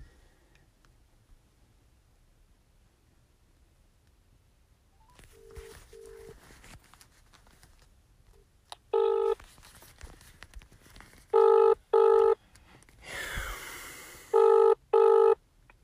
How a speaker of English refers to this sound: All right, let's give my sister Dearest a call. Hopefully she picks up the phone.